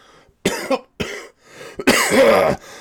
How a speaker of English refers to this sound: So, yeah, it's getting there, but I'm going to have to take breaks to take water because the cough is still, it's still there. It's not a ton. Oh, there, yeah, see, there's the voice going.